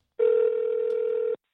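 A single steady telephone tone, like a ring on an outgoing call to a woman being phoned as a guest, sounds clearly for just over a second through a narrow phone line, with no voices.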